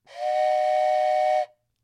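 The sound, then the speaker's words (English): A single toy train whistle blows one steady, breathy toot of about a second and a half, loud, with an airy hiss mixed into the tone. No one speaks. “That's just because sometimes you got to decompress and just blow a train whistle.”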